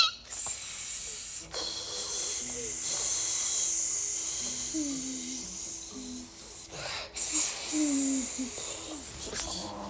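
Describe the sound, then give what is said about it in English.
A child imitates a snake with long, breathy hisses, broken by two brief pauses for breath, with faint voiced murmurs underneath. “What does a snake do?”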